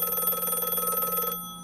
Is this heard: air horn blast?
no